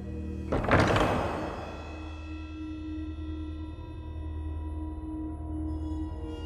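A heavy door swings open with a single deep, booming thunk near the start, followed by a low, steady resonant hum that lingers with an echo.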